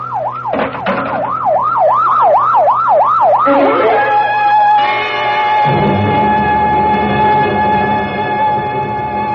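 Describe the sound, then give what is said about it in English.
A loud ambulance siren wails in rapid rising and falling sweeps as the ambulance arrives, then switches to a steady, blaring tone over a low vehicle rumble, continuous throughout. “Oh, better get that ambulance out here fast. Professor Mist will have a chance. Here it comes now, Lieutenant.”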